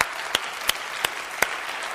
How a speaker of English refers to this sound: And he rose again on the third day, and he's alive, and he's Lord, and he's Savior, and he deserves a hand clap. He's amazing.